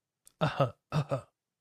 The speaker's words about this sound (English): I had to clear my throat because I just felt sinusy.